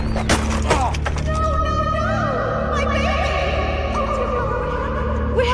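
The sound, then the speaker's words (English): A child riding a bicycle with no hands loses control and crashes with a quick burst of clattering thuds and splintering impacts near the start, then sliding, wavering tones ring out over a steady low background rumble. “I just lost control of my bike and crashed.”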